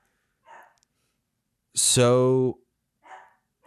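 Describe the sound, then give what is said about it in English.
A single loud, drawn-out dog bark rings out, rising sharply then holding a tonal, slightly howling note before cutting off, with a few faint, soft sounds before and after. “So we're going to get into that and we're going to get my dog to stop barking when before we do that.”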